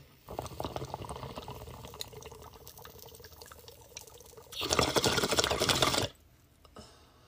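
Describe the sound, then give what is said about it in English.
Bong water bubbles in a steady, rapid gurgle for several seconds as someone takes a hit, fairly loud, then swells into a brief, stronger rushing burst before cutting off to near silence. “Let's take a fucking rip, guys.”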